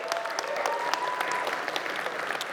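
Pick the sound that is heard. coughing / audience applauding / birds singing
audience applauding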